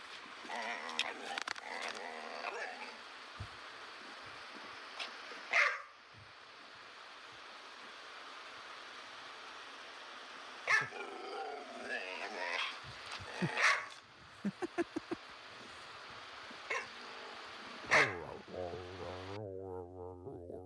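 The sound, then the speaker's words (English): A female pet dog whines and yips in short, high-pitched bursts, a few seconds apart, because she wants to go outside, over a steady background hiss, ending in a longer drawn-out whimper. “That's my dog when she wants to go outside”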